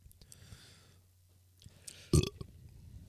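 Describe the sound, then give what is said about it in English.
A single short, throaty burp erupts near the end, loud against a quiet background of faint breathing and small mouth noises. “And I burp.”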